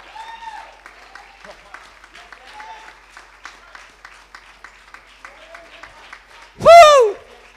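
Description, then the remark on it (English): A church audience claps in a steady, rhythmic beat throughout a sermon, with voices calling out over it and one loud, high whooping cry bursting out near the end. “All this clapping going on.”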